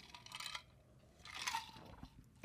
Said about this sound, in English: In a shot glass or just drink out of here? Drink out of here. But like take a big sip.